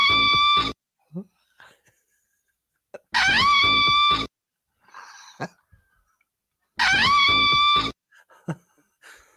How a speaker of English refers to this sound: Yeah, that's a cow. Oh, that's a cow.